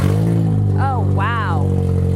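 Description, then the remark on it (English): A car engine whose catalytic converter was stolen roars loudly and roughly as the car is started in Houston, a deep, continuous rumble that rises in pitch twice as the engine is revved. “Brittany Burns recently started her car and heard this.”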